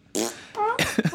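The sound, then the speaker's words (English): A string of wet, raspy fart noises from a video game gun that makes fart sounds each time it is shot, loud, sputtering in several bursts over about a second with broad noisy blasts and brief tonal squeaks. “Every time you shoot, it makes fart sounds out of your fucking hell, man.”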